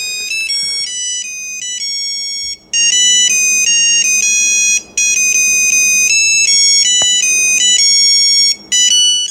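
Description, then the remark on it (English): A bright, synthetic polyphonic phone ringtone plays a bouncy melody of stacked electronic tones, looping with brief pauses between phrases, loud with no one talking. “So I've got the polyphonic ringtone. Just playing for people.”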